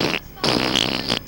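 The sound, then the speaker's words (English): Two buzzy, sputtering fart noises from Leo the Farting Leprechaun, a recurring character on the Toxic Wise Ass Show on Renegade Talk Radio: a short blast followed by a longer, louder rasping one, prominent with no talking. “Hello, this is Leo the Farting Leprechaun.”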